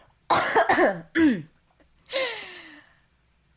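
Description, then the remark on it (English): A close, loud fit of coughing: a quick cluster of harsh coughs, a short pause, then one longer, raspy cough trailing off into a strained, voiced exhale. No talking. “When people do podcasts, how do they cough?”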